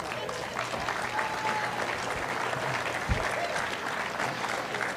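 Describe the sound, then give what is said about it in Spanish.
An audience applauds steadily for several seconds for the speaker's mother-in-law, a dense wash of many hands clapping at once, holding an even loudness throughout. “A ver, un aplauso para la suegra.”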